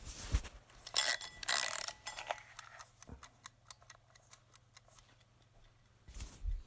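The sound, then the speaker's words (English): A mechanical timer is wound by hand to 20 minutes: a burst of ratcheting clicks, then a steady run of quick, faint ticks with a low hum beneath, with no voices. “Let's wind up the timer.”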